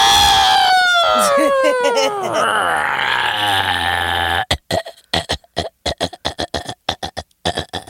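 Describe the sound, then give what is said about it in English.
A loud elephant trumpeting sound effect: a blaring, wavering call that slides downward and rasps for about four seconds, followed by people talking. “It's been in the closet for a while. It's a little rusty, that elephant.”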